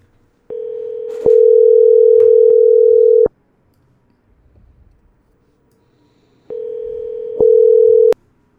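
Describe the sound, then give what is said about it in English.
A telephone ringback tone on an outgoing call: two long steady electronic rings, each lasting about two and a half seconds, separated by a silent pause. The rings are loud and clear, with no voices. “If you want, let's see what's ringing.”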